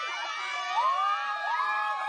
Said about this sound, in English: Thank you to everyone here from the LGBTQ community, and thank you to all the allies from across campus. The crowd cheers happily.